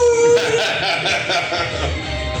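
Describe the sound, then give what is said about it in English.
A loud, exaggerated cartoon wolf howl, opening on a sharp sustained tone before breaking into a rough, wavering wail that fills the short clip. “Cartoon wolf eyes.”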